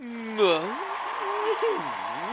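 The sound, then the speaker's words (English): Steady, dense applause from an edited-in studio audience runs throughout at a fairly even level, with rising and falling voiced sounds, like cheering or shouts, riding over the clapping. “Everybody in the audience, clap for me.”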